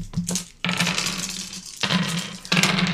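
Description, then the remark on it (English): Dice clatter and tumble across a hard tabletop in a few loud bursts of rattling, with short pauses between rolls and no voices, rolled while playing the RPG Fiasco with the DC-73 playset. “Alright, let's roll some dice.”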